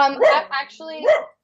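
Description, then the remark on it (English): A male pet dog barks in a quick run of three or four loud, pitched barks with a slightly whiny, yelping edge, over about a second and then stopping. “My dog is rude. He wants to put some input in as well.”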